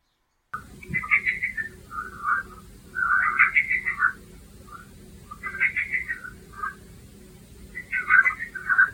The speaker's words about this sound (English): Would you believe, as far as I know, that's frogs. Yes, frogs. Lots and lots and lots of frogs. And we're surrounded by fields and small amounts of water, so I guess they're all having a jolly time in their little houses.